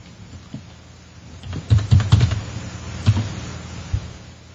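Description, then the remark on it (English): Typing on a computer keyboard: a quick cluster of clacking keystrokes, a pause, then a few more scattered taps, with no voices. “That's an actual keyboard.”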